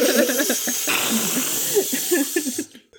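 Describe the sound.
Several people hiss together like snakes in a steady, breathy stream for a few seconds, with faint murmured voices mixed underneath, before the sound cuts off abruptly.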